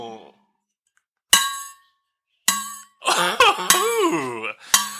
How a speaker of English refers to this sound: I feel like I'm listening to a metallic water bottle first being blown over and then struck. It's actually a new guitar I've been working on. It's all percussion.